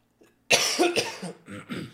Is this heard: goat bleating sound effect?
no